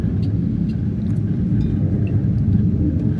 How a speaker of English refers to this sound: Oh, them planes. I better turn this off for a minute.